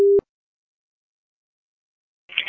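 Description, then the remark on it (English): A short burst of a steady electronic ringback tone on a phone line, a call to the Candlewood Suites hotel in Tuscaloosa, cuts off abruptly, followed by a long silence and then a rustle as the call connects. “Wow, that was a lot of ringing.”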